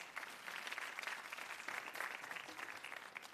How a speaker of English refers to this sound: It's okay to clap.